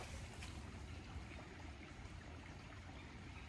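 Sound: water trickling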